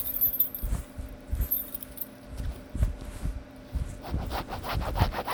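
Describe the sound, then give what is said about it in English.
Keys jangle and scrape in short, uneven strokes as they are used to cut a sweatshirt, with low rubbing thumps throughout and brighter metallic jingling toward the end. No one speaks. “Here, I have my keys. Let me try.”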